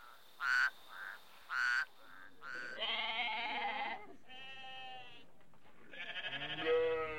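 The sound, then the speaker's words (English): Sheep bleat several times in a row, loud, their wavering, quavering cries overlapping after a few short calls at the start. No one speaks. “She sips her fresh-smelling coffee and then goes after the sheep.”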